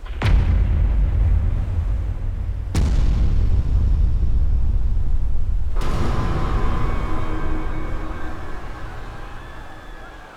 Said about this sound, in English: The stern of the great ship had now risen 45 degrees out of the water. She had not been designed to bear such a load, and, with horrible sounds, she split in two. 30,000 tons of metal plunged into the water.